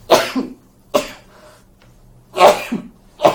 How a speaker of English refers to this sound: Excuse me. Okay. Anyway. I cannot sneeze less than four times. It has to be four or five or six times.